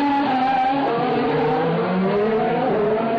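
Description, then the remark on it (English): Race cars roar past on the track at Monaco during practice three, their engines whining loudly and continuously with pitch rising and falling as they go by, heard from about 20 feet from the track, with no talking. “The cars are definitely noisier.”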